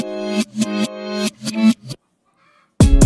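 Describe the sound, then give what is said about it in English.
Loud chickens squawking in a rapid series of harsh, raspy calls for about two seconds, a brief quiet pause, then another burst of squawking starting up. “as soon as I got everything ready, they started squawking”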